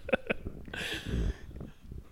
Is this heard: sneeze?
yes